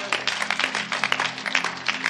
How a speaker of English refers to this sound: Clap your hands for God.